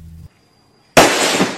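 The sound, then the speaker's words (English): During a Wild West show at the Great Roman Hippodrome in New York in 1874, a brief low hum fades into near silence, then gunfire erupts in a sudden, loud crack that rolls on with a harsh, sustained rumble to the end. No one speaks. “But on July 17th, just a half hour into the show, I heard the sound of gunfire.”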